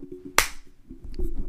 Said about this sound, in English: Ooh. I'll just do that again. I'll just clap there.